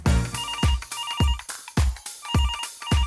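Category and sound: signal or alarm, phone ringing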